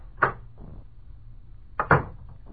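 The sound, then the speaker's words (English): An office door in a new building opens and then shuts about a second and a half later, two short wooden knocks with a low hum in between and no voices. “I stepped outside the office door and walked over to the brand new stairway of that brand new building.”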